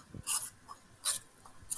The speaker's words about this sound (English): Some ASMR. Who's got potato chips? Please stop doing that. It's a pencil sharpener. I'm drawing.